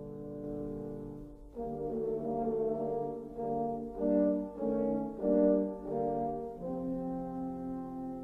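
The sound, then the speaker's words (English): French horns play the wolf's theme: a low, brassy melody of sustained harmonized notes that swell and pulse through the middle before settling into a long held chord, with no talking. “French horns to the wolf.”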